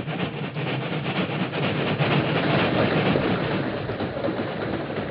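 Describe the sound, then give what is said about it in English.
A freight train rumbles past on a railroad east of Elk City, a steady, loud roar of wheels and cars on the rails with faint rhythmic clatter running throughout. “We'll wait here in this ravine till the train goes by, Tonto.”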